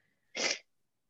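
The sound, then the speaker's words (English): A single short, muffled sneeze bursts out and stops almost at once, soft and breathy rather than loud, with near silence on either side. “I'm about to sneeze, sorry.”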